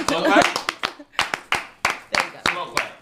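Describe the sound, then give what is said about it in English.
A slow clap: a dozen or so sharp, evenly spaced hand claps at a steady, deliberate pace, with voices talking and laughing over the first second before the claps carry on alone. “When you say, did we really just slow clap? We did.”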